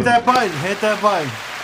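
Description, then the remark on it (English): A short burst of applause sound effect played by hitting a button, a steady crackling wash of clapping with rising and falling whoops and cheering voices over it, lasting under two seconds. “Give me a round of applause. Give me a little of Hit that button.”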